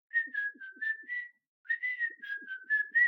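Someone whistles a bright, bouncy tune on their own, in two short melodic phrases split by a brief pause, clear with no talking.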